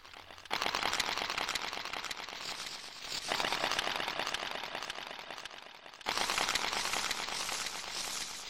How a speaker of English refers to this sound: Then he casts a nightmare-inducing spell. An echoing rattle gives way to the rustling of leaves.